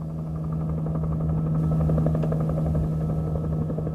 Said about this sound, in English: Now it was time for the helicopter to do its thing.